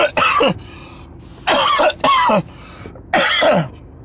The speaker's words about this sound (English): God damn. You ever cough so hard you feel dizzy? Facts.